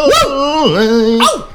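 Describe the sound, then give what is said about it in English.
A person lets out loud yelps that sound like a small dog: a sharp cry, a drawn-out whiny tone that dips and holds, then another high yelp. “Sorry, I sounded like a stupid, like, little, like, mangy dog.”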